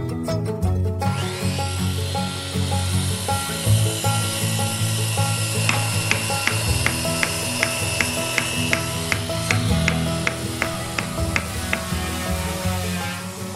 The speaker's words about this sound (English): then the administration started coming up because they're hearing a lot of sawing and they're hearing, you know, they're probably smelling dust and there's like, you know, the smell of epoxy. What's going on in this room?